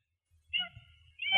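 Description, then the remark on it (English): A female cat named Dee Dee, having just jumped up, meows twice in quick succession: two short, high, tonal calls with a brief pause between them and no talking. “Oh, sorry, my cat just jumped up here. She wanted to say hello to you.”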